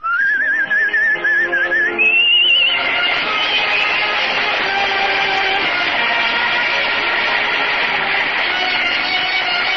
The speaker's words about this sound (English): I better whistle it.